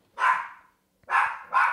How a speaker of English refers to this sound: Yeah, it's the doggo barking.